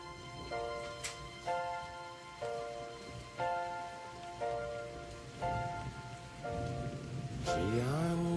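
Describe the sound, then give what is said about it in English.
Steady rain patters over a surface while soft, sustained musical notes repeat about once a second above the hiss; no one speaks. “It's raining.”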